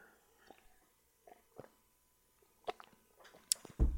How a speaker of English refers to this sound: I'm going to take a sip of water real quick, folks.